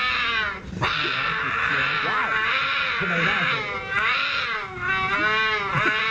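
Loud, drawn-out wailing yowls of cougar mating calls, rising and falling in pitch and continuing almost without pause for several seconds.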